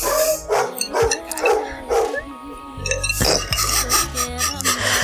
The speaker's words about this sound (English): mute when the dogs start barking. Unmute when they're done. I thought I did mute when it's barking.